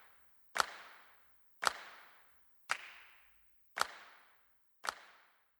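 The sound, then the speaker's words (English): Five crisp hand claps added to fill out the percussion of a song arrangement land at a steady pace, roughly one per second, each a sharp bright snap followed by a brief fading tail, with nothing else playing and no voices. “First, he filled out the percussion a bit more with adding some hand claps.”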